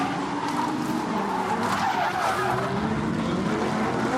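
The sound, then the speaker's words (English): Race cars skid and slide off a rain-soaked track at Canada Corner, one car after another, with a continuous, dense roar of engines and tire noise, loud and steady throughout with a hissy, spray-like wash over it. “Let's see if we can see what happens as the drivers come in here, kind of unaware that it is even raining. One car off, two cars, three cars.”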